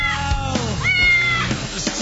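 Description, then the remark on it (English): A cat meows, one long, wavering, drawn-out call rising and falling in pitch, loud against a steady low background hum. “How's your cat doing?”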